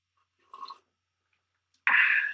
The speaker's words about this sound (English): I'm having a sip of coffee.